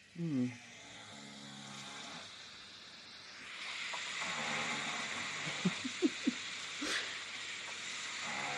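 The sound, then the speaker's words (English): Snoring recorded during sleep: a rough, breathy snore builds into a long hissing rasp, with a few short voiced grunts and catches breaking through near the end. “So 55%, and oh yes, a minute of snoring. What does that sound like?”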